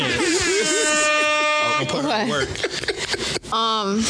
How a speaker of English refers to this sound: But that's kind of cool. Yeah. That deserves an air horn.